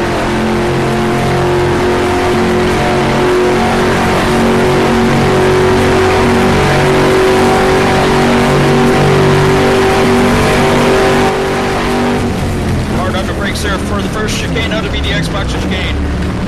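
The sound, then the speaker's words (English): A race car engine screams at full speed in a loud, steady, high-pitched drone for about twelve seconds as the car blasts down the Mulsanne at 200 miles an hour, then its pitch drops and breaks up as the car brakes for a chicane with rapid downshifts. “So let's get our good first real 40 sound of this car as we blast down the Mulsanne at 200 miles an hour.”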